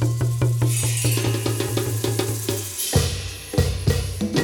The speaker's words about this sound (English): Let the talking drum speak.